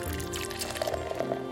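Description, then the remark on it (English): Stone Enjoy By 010120, an unfiltered double IPA at 9.4 ABV, pours steadily into a glass, a continuous foamy splash and gurgle with a faint ringing tone as the glass fills, with no voices over it. “Let's pour her out.”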